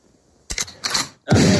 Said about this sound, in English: I had to get my shout out, my gunshot sound effect in there.